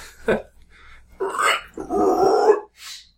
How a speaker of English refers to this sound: Sorry. Gotta clear my throat.